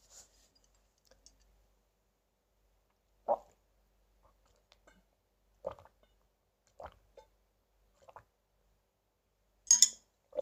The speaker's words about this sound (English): All right, time to drink something. Drink some water. I feel super dry.